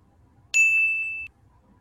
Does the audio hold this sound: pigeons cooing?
no